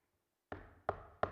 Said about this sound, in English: Knocking.